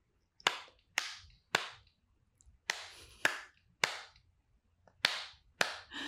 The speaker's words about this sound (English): Oh, you can't? Yeah. We heard the first three. What if I clap? Yeah. Yeah, you can clap.